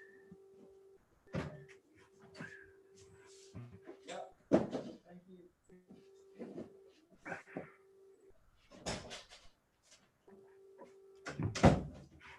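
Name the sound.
door opening and closing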